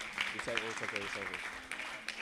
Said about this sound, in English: In Jesus' mighty name, give him a clap offering today.